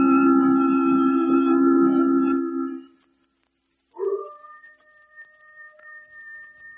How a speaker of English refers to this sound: Get that coyote off in the hills.